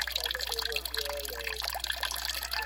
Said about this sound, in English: And then that water that was up in that yellow bowl comes through that Sawyer filter you're watching there. It's gravity-fed. It comes out absolutely clean.